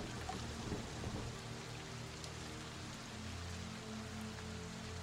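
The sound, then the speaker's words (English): Steady rain pattering on a hard surface, a dense continuous hiss with scattered drips, even throughout, with no voices. “She's like, come now, let's get out of this rain and get nice and warm and dry.”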